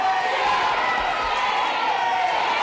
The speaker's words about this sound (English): Part of the yelling you're hearing in the State House there is protesters yelling shame from the balcony above.